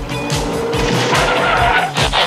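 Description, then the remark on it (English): A car's tires skid loudly to a stop as it nearly hits boys riding without reflectors as it is getting dark, a harsh, noisy screech over a low engine rumble lasting a couple of seconds, with no voices. “Slow down! I can hardly see! Look out, a car!”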